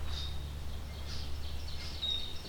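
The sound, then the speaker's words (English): Red-winged blackbirds, including some juveniles, call faintly, a scattering of thin, high chirps and buzzy notes repeating every second or so over a steady low rumble, with no voices. “Lots of red-winged blackbirds, including some juveniles, it sounds like.”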